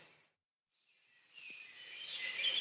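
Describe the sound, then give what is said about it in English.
A woodland dawn chorus fades in after a moment of silence, a soft wash of many high birds chirping and trilling at once, growing slightly louder toward the end; in woods in Monmouthshire at 7:30 in the morning in early May. “Enjoy a glorious dawn chorus in the Brecon Beacons”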